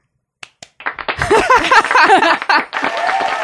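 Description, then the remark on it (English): Two sharp, isolated claps, then a sudden loud burst of sustained clapping and applause mixed with whooping, cheering voices that carries on to the end. “Do I get a clap?”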